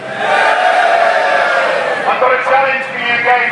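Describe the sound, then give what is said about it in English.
A large crowd at GameFest 2011 cheers and shouts together for the cameras in a sustained, loud roar of many voices, rising and falling slightly over a few seconds. “Give a huge wave and a cheer to the cameras all about!”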